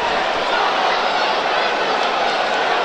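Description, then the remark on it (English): An upset football stadium crowd at a Bradford City versus Barnet match, with Barnet leading 2-1, fills the air with a dense, steady wash of murmuring and grumbling voices, loud and unbroken for the whole stretch, with no single speaker standing out. “Let's just record a bit of crowd atmosphere, shall we?”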